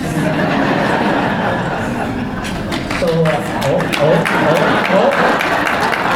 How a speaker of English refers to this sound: Okay. That's our first vote of the day. We go by clapping.